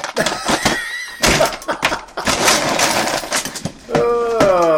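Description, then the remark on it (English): Dishes clattering as they are put away: a busy run of sharp clinks and knocks, some ringing briefly, with a steadier scraping stretch in the middle and a bright tonal ring near the end. “She's putting dishes away.”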